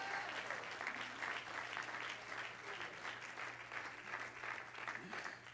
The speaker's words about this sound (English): Everybody clap your hands to the Lord today and shout yes.